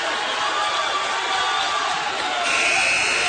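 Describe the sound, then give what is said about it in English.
A loud arena crowd at a wrestling match roars steadily, then about two and a half seconds in a sustained period-ending scoreboard buzzer cuts in and holds to the end, sounding over the cheering and shouting. “So a 2-point reversal at the buzzer.”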